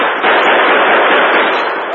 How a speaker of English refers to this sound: But guns blazed from behind the long bar and from both doors and all windows. As the townsmen, their courage renewed by the Lone Ranger, fought savagely to subdue the gang once and for all.